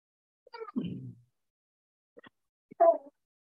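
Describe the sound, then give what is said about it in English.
A dog gives a few short, whiny vocal bursts, a longer yowl followed by two brief yelps after pauses, with no talking. “Even the dog wants to get involved.”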